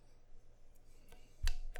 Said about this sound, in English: That's the resonant chime of the fancy fantasy football trophy. I'm a little upset, one, that you haven't engraved this. I will get it before the draft. And two, that it's my trophy is covered in dust.